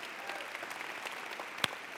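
A steady round of applause, many hands clapping in a dense, continuous wash with one sharper clap standing out near the end; no voices over it.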